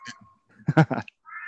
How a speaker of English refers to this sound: Oh no, the cat.